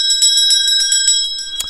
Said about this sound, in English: No, that was a spooky bell. That's the kind of spooky bell you hear on Halloween.